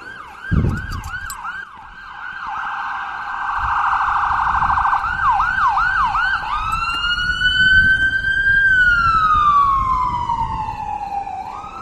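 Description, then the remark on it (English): Emergency vehicle sirens wail and yelp loudly going up Bellamy Road, recorded from a parking lot, shifting patterns before one long tone slides down in pitch as it passes, with low traffic rumble underneath. “You can hear the sirens too.”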